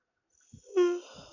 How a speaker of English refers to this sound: Oh shit, this is such a big yawn. I'm yawning so much today, I don't know why. I'm feeling actually very relaxed, maybe that's the reason.